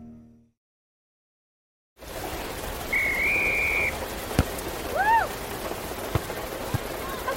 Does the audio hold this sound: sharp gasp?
no